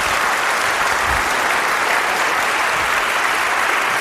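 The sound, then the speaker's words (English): Steady, dense applause from an audience, a continuous crackle of many hands clapping at an even loudness throughout, with no voices standing out. “I thought we weren't supposed to clap yet.”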